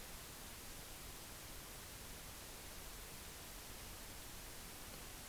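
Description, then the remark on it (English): A faint, steady hum and hiss from a Shure SM7B microphone with its noise gate turned off runs unbroken throughout, a constant background noise floor with no gating, no talking and no other sounds. “It's just I'm hearing this little bit of a hum.”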